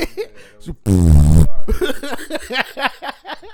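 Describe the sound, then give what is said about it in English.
A loud, wet fart sputters out in a single burst lasting about half a second, with people talking just before and right after it. “That was a shart.”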